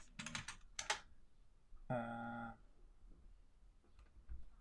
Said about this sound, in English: My new keyboard is loud as hell, so I won't be Googling as much on the show.